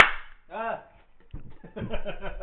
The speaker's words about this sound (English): Hey, that actually clapped on two mics.